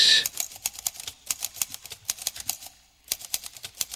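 Rapid, uneven mechanical typewriter keystrokes clack away, sharp, with a brief pause near the end before the typing resumes; a high ding or bell sounds at the very start. The typing is part of a song's intro.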